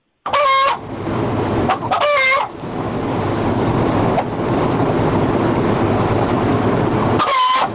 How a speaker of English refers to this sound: Oh no, the chicken.